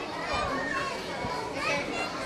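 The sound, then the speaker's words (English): A crowd of children chatters and shouts all at once, a steady, lively babble of overlapping young voices with occasional higher squeals rising above the din. “We're walking right through the crowd.”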